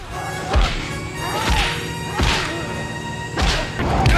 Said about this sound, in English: So when she thinks of what a punch sounds like, it's like this very over the top thud that you'd see in, you know, serials, or it kind of reminds me of something you'd hear in like a Indiana Jones movie.